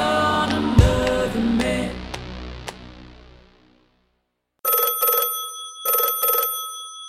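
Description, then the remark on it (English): A music track rings out and fades to silence, then a telephone bell starts ringing loudly with an incoming call at 3 a.m., two bright trilling bursts with a short gap between them. “your phone.”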